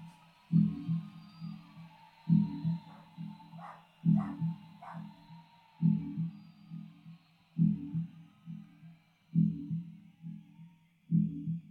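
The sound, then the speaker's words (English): The speaker's dog barks in the background in a slow, steady rhythm, seven deep, muffled woofs evenly spaced about two seconds apart, with no talking over them. “You can hear my dog in the background.”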